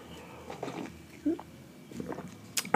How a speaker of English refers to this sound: Just having a sip of a cappuccino. I recently got a cappuccino machine and really loving it.